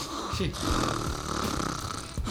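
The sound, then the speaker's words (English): A voice imitates a woman's heavy snoring, a loud, rasping, drawn-out snore rumbling across a couple of seconds, with a brief catch of breath near the end. “She hasn't had that lover that stayed with her long enough to tell her just how bad her snoring is.”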